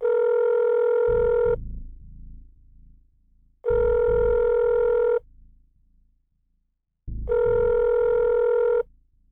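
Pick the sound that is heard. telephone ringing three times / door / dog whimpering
telephone ringing three times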